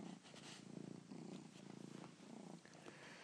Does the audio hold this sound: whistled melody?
no